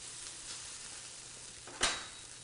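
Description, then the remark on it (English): Steady, crackling sizzle of potatoes frying in a hot pan as they are added and smoothed out, with a brief louder burst of hissing near the end. “So you wanna take your potatoes, and you're gonna listen for that little, see that sizzle? That is the noise you wanna hear, and then you just smooth them out in the pan here.”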